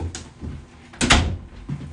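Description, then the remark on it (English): A door is opened for a dog with one firm clunk of the latch and a brief rattle, set against faint room noise and a few soft handling sounds, with no voices. “Hold on, it's my dog at the door.”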